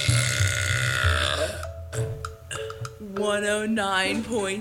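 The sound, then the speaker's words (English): A long, very loud burp by a woman, measured at 109 decibels on a decibel meter, rumbles continuously for several seconds, deep and resonant, shifting into a higher, tonal croak toward the end. “So I simply decided to buy my own decibel meter and I burped a 109.”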